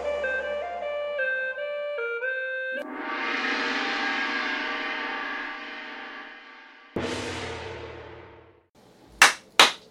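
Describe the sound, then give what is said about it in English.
Two quick, sharp hand claps land close and loud right at the end, following a stretch of musical tones and a sustained rushing noise, with no talking. “The double clap signifies the start of an episode.”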